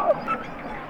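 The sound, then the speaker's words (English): Harp seal calls recorded underwater with a hydrophone dropped a few feet below the ice: a quick, bright chirping whistle slides downward over a steady watery hiss, with faint overlapping trills in the background. “Those are all harp seals.”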